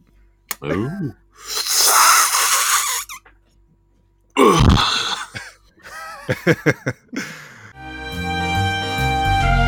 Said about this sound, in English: Were those little farts? Yeah. It sounded like it.